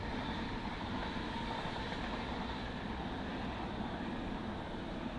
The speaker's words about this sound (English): oh, there's a train going past.